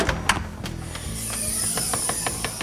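The roof window of a net zero show home is opened with a few sharp clunks and then a steady run of quick mechanical clicks, while a faint thin hiss rises in the background.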